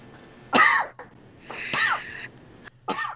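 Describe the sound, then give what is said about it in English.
Three harsh coughs burst out in quick succession, loud, with a brief pause between each and no talking around them. “I muted that cough for you.”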